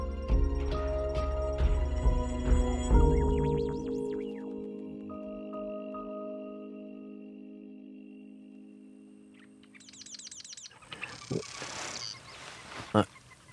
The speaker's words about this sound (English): I'm hearing, that's a Sora rail. That's a bird you almost never see, but you hear it. Secretive marsh birds are in that group.